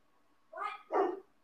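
Two quick, loud dog barks in succession, with a brief gap between them and quiet afterward.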